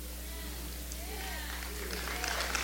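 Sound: audience applauding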